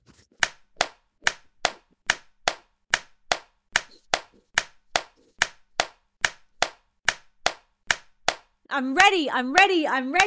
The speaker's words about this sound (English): And we're going to start breathing really quickly, doing 20 breaths while clapping and smiling in 3, 2, 1, 20 fast breaths. Here we go.